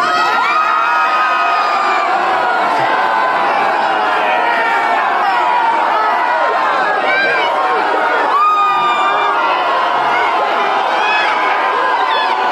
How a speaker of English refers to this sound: Here comes the crowd reaction.